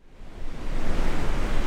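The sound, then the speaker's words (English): Ocean surf on a beach in Southern California on a sunny afternoon, a broad hissing wash that swells up within a fraction of a second and then rolls on steadily and fairly loud, with no voices. “The sun is beating down on a volleyball game in the sand and a surfer paddling out into the waves.”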